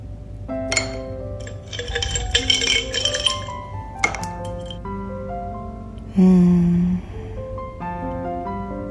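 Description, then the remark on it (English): Ice cubes clink and knock together in a bowl of coconut water with blueberries, strawberries and pomegranate, a bright jumble of glassy taps and ringing pings that come in several bursts and then settle, with no talking. “I like ice with my cereal.”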